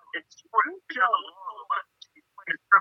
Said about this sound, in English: there's a massive echo there. It's me. We don't need to hear. No one wants to hear me twice. Please turn down the volume.